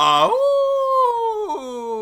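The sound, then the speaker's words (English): Someone in a studio imitates a wolf howl: one loud, drawn-out note that swoops upward, then holds steady with a slight waver before sagging at the end, with no other sounds. “Oh no, it's the, oh, stop the recording, it's the horny wolf man. He broke into the studio.”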